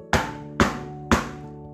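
Three sharp, hollow knocks on bamboo, evenly spaced about half a second apart, each a bright woody tap with a short resonant ring. No voices.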